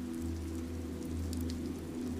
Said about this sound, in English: Enjoying the sounds of rain and the softness of this time.